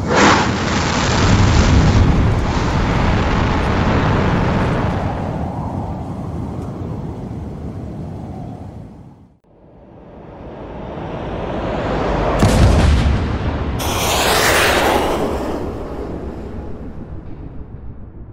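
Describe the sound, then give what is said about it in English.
A powerful explosion opens with a broad, roaring blast and a long rumbling tail that fades to near silence, then the roar swells back with two more sharp, hissing bursts. “Fire in the hole!”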